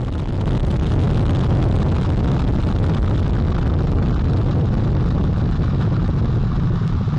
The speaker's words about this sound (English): All four RS-25 engines on the core stage and two solid rocket boosters now propelling the vehicle at 128 miles per hour.